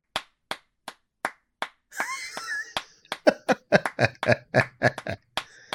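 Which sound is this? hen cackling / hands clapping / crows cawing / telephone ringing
hands clapping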